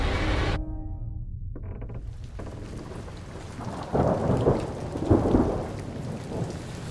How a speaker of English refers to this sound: It's a rainy night.